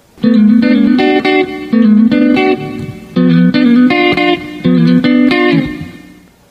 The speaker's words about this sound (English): Here's a sliding lick that I use, almost like a fill, but I use it rhythmically. Here's the D6 chord going to a G7th chord.